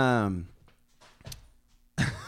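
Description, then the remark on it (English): A few soft, irregular thumps and flapping knocks as a female dog struggles through a dog door, with a person speaking just before and after. “She's struggling through the dog door.”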